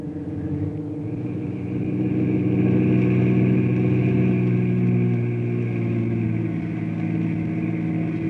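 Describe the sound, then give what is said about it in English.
A car engine hums steadily as the vehicle drives along, its low droning tone swelling slightly in the first seconds and then holding at a constant, fairly loud level with no voices. “You fellas wait in the car.”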